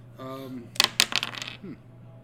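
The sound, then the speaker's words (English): A brief voice sounds first, then dice rattle in a dice cup: a quick burst of sharp, clattering clicks lasting about a second before it goes quiet. “Here is the dice cup.”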